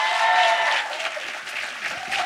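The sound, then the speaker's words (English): A crowd at a live show in Oslo claps steadily for a couple of seconds for everyone at SALT, a dense, sustained burst of applause that stays fairly loud throughout before easing slightly. “So please give everyone at SALT a huge round of applause.”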